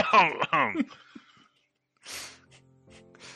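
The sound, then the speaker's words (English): A voice mimics the cough of the character Melian with a quick series of throaty, voiced bursts, then a short pause before a breathy puff of air and a faint hum. “Yes, and Melian coughs like...”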